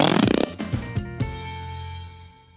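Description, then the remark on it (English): A short, loud, buzzy rasp like a rubber whoopee cushion deflating with a fart noise, immediately followed by a few punchy musical hits that ring out and fade. “When they sit down on the whoopee cushion, it makes a sound like a fart.”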